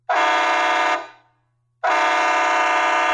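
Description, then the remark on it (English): Two loud, sustained blasts from an Outlaw XL air horn, each about a second long and rich in harmonics, separated by a short pause as the first one fades out; alone with no talking. “Outlaw XL.”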